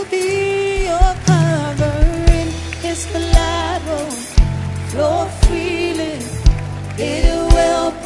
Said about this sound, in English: Clap your hands for them. They are coming.